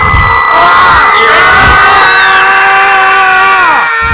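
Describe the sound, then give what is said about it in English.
A loud chorus of many overlapping shrill screams from vampires disintegrating into puffs of smoke one by one, sustained, with several voices sliding downward in pitch before the whole din cuts off abruptly near the end. “The screams continued as the last few vampires disappeared”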